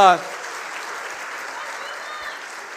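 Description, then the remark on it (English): An audience at Heart Church's first Christmas Eve gathering claps steadily, a dense, even wash of applause that carries on without letup, right after a voice cuts off in the first moment. “And it is incredible that you can clap for that, that's fine.”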